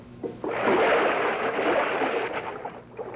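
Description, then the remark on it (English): A heavy splash as someone drops from a window into a rain barrel, followed by a couple of seconds of loud churning, sloshing water that gradually settles. No one speaks. “Doggone it. Left that rain barrel there.”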